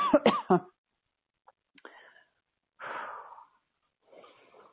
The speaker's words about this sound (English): It's actually coming up. I'm going to start coughing because I feel it.